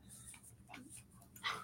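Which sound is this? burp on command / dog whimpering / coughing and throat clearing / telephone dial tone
dog whimpering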